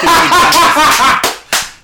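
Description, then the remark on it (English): Two sharp, loud slaps on a microphone in quick succession, each a heavy thump followed by a brief ring-off, after a stretch of laughter-like vocal noise. “I'm slapping a microphone, too.”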